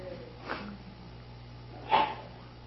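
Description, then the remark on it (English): A single sharp sneeze, led in by a softer breathy burst about a second and a half earlier, over a low steady hum with no talking. “Bless you.”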